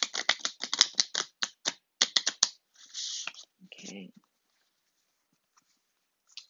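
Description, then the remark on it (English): A Heavenly Bodies astrology card deck being shuffled for a card reading: a quick run of crisp, papery clicks and snaps for a couple of seconds, then a short rustling slide and near silence. “I'm gonna shuffle.”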